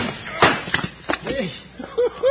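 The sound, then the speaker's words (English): A sharp, loud gunshot cracks out early on, followed by another short bang, with excited voices shouting and calling out around the shots. “Wow, what a shot.”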